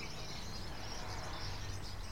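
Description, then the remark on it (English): A busy chatter of goldfinches calling from a flock up in a tree, a steady wash of high twittering notes with no pauses. “I don't know if you can be picked up with the microphone, but a big chatter of birds up in the tree up there. And that's actually goldfinches singing.”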